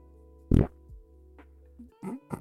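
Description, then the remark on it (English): A loud, low, raspy throat fart bursts out once, then a few softer sputtering grunts follow over a steady low hum. “Oh, dude, that your throat fart? Yeah, it's the throat fart.”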